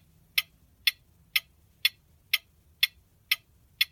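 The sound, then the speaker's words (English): A clock ticks steadily, eight crisp, evenly spaced ticks about twice per second, moderately quiet, with no voices or other sounds around them, timing a round of a word game. “And the clock starts now.”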